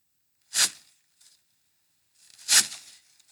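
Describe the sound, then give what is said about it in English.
Two sharp, crunchy swishes of shears cutting through bushes, a couple of seconds apart, with a faint rustle between them; each cut is brief with a short leafy tail, and no one speaks. “This sounds like a cut, like you're, I don't know, the big cut of the shears, or potentially you're walking in like a puddle, not a puddle, but like there's 50 dead leaves and you stepped into those dead leaves potentially.”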